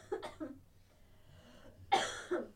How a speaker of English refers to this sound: I was sick like 2 weeks ago and I can't stop. The cough lingers. Coughing. Yeah. It's disgusting.